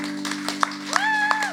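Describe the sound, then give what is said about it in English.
An audience at a church service breaks into scattered applause, loose claps overlapping, with a long whooping cheer rising above them and a steady low hum underneath. “Why don't we give a round of applause for Matua?”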